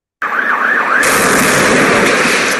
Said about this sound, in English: So our first explosion is brought to you by the Iraq War.